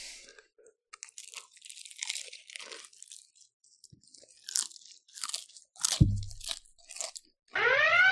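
Crunchy chicken skin being chewed loudly, with irregular bursts of sharp, crackling bites and wet mastication, a heavier crunch midway, and a rising squeaky scrape at the end.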